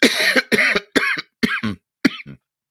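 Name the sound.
cough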